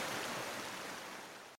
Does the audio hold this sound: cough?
no